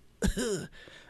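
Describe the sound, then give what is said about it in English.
A person mimics their mother's cough on a phone call: one loud, raspy, voiced hack lasting about half a second, trailing into a breathy rasp, then a brief second burst at the very end. Dry. “And my mom's like, we're supposed to go over to my mom's at like noon, and my mom calls me with like this cough, like.”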